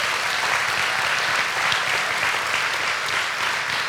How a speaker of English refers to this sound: It's always a roll of the dice to get the preschool on the stage, amen? But can we give them and the teachers one more big round of applause?